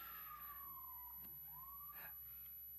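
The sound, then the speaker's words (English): An ambulance siren passing outside wails, its tone sliding down and then climbing again in a slow sweep, faint against a steady background hum with no one speaking. “Okay, so we're going to have the visiting of the ambulance, but we're all right, so we'll continue on.”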